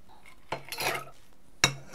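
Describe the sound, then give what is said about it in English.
Shaken cocktail preparation: two sharp metallic clanks about a second apart, with a brief rattling, clattering burst between them, like bar tools and a shaker being handled. No one speaks. “This is a shaken cocktail.”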